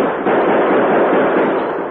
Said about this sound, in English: But guns blazed from behind the long bar and from both doors and all windows. As the townsmen, their courage renewed by the Lone Ranger, fought savagely to subdue the gang once and for all. Many men were wounded.